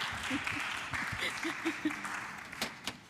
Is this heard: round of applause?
yes